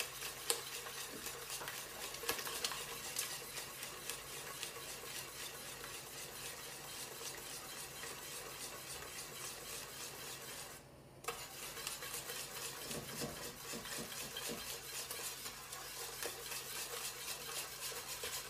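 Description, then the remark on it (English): Sugar is stirred as it melts in a pan: steady scraping and stirring over a constant sizzling hiss, with occasional light clinks of a utensil against metal and a brief dip in the noise partway through. “Sugar melts when the temperature raises up.”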